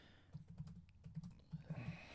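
Rapid clicking of keys on a computer keyboard as someone types the question "when did he retire", a quick burst of typing with irregular bunched taps, fairly quiet, with no voices.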